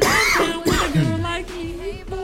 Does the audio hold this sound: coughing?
yes